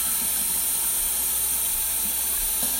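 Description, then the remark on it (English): A tap runs steadily as someone gets water, giving a continuous rush of water with a bright, hissy spray and no break for the whole moment. No one speaks. “Sorry, I got to get some water, guys.”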